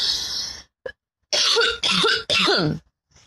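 Three harsh, raspy coughs come in quick succession, fairly loud, with a rough throat-clearing quality, after a brief breathy noise and a short pause.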